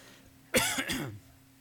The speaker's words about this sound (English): We, excuse me, cough drop doesn't do any good if you choke on it.